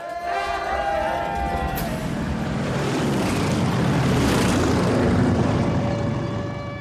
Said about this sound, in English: As they come out of their house to greet their guests and family, three sons, one daughter, and Carl's son from a previous marriage, Michael, they're interrupted by low-flying planes dropping leaflets. War has broken out.